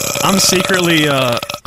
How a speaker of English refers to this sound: I can see the audio spec right there. Look, it's 3 seconds long burp. Wow, that's pressure.